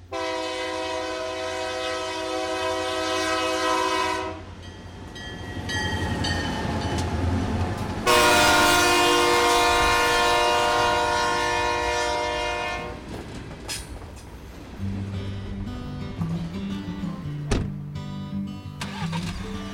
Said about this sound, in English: And when they used to have sleepovers here for the girls, apparently it would, the train, which came by twice a day, but one of those times was 2 a.m. And it would startle people practically out of their skins when they were here spending the night.